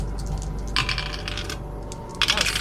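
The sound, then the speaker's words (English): Dice clatter across a hard table in two quick bursts, bright rattling clicks tumbling then settling, over a steady low hum with no voices. “I just rolled, it landed on the nest bit.”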